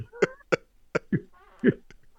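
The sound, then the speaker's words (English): A run of short, sharp coughs, five or six quick bursts spaced unevenly over about two seconds, with no talking. “You got a cough button, you know.”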